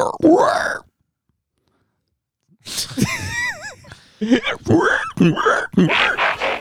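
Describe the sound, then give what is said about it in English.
A person makes snorting, grunting oink noises imitating a pig, with a burst at the start, a pause, then several more nasal grunts and squeals in quick succession. “That's a good pig noise, isn't it?”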